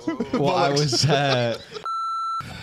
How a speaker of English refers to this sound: Go on, say it. No. I can give you a beep.